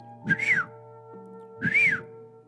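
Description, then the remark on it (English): A man at a statue shop stall whistles two short, clear notes that swoop up and fall back down, spaced about a second apart, over a steady low background hum. “As she was walking around, there was a man at a statue shop, and he was whistling.”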